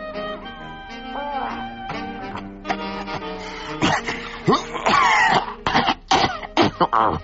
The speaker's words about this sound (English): Oh, for heaven's sake, Rumpole, do stop coughing. And that's quite enough groaning. Oh, I think I am dying, Hilda. Well, I wish you could die without making so much noise.